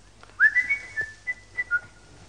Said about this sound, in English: I heard the milkman whistling …